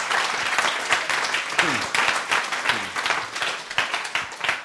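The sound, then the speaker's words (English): An audience claps steadily and loudly for several seconds in honour of Jesus, a dense wash of many hands with scattered cheers and whoops rising briefly above the applause. “We're clapping him.”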